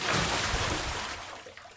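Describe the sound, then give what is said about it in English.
A loud rush of water splashes down in one broad burst, then thins and fades over a couple of seconds, like a bucket being emptied, as women douse a woman with water. “At once, women to bring water which they used to douse Sholpan.”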